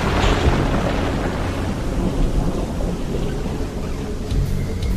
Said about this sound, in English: The ground is shaking now. It's an earthquake! The atmospheric pressure is intense. People are scattering and things are falling all over. I can see into the city and the buildings are toppling.